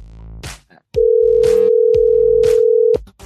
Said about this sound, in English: Fuck, we gotta call him back. Oh, shit. Come on. Answer the phone, asshole.